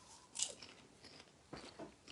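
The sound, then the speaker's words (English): Crunchy chewing of cotton-candy flavored popcorn, a few crisp bites and soft crackling crunches spread over a couple of seconds, fairly quiet with no talking. “If anything, it tastes mostly like popcorn with a slight hint of like flavoring, you know, like a cotton candy flavoring, but it's very, very subtle.”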